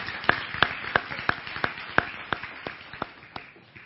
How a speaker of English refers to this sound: You can clap. Absolutely.